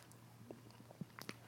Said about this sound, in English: I think we're chewing a bit loud. Yeah, you are.